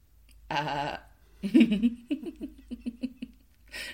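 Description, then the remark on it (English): A person lets out a short, wavering bleat imitating a goat, saying "Gossip Goat" as a parody of the Gossip Girl line, followed by a run of pulsing, stuttering laughter that gradually fades. “Like a narcoleptic sheep.”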